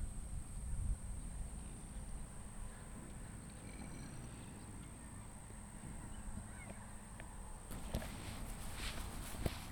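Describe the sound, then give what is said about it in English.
Steady footsteps crunch as a person walks through the center of a farm among many animals, over a low, busy outdoor rumble, with faint animal calls scattered in the background and a few sharper knocks near the end. “Maybe you can hear my footsteps and just get the full sound of what it feels like to stand right in the middle of all these animals before we go explore what different individuals sound like.”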